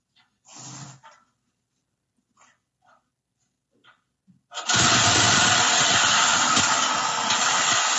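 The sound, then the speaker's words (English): A single short bark and a few faint clicks, then a reciprocating saw (Sawzall), used by thieves cutting under a truck in broad daylight in California, suddenly roars into a loud, harsh, continuous buzzing cut that runs steadily without a break to the end. “They just have Sawzalls sitting there, right?”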